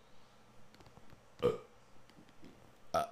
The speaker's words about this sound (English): Excuse me, by the way. Let me apologize for burping.